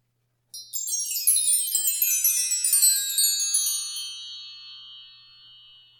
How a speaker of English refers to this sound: We'll be back after the wind chime.